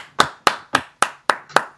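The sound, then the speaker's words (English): Six sharp, crisp hand claps in a steady, even rhythm, each one a quick bright smack that fades fast, with no talking underneath. “Guys, are we applauding?”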